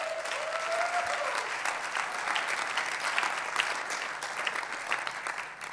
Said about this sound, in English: Hey, come on, let's give them a massive round of applause.